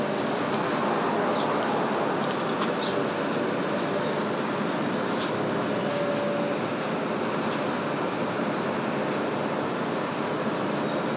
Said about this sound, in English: It's a holiday, so there's nobody here at the train station. There are no trains coming. There are no trains going. There are no people. No cars.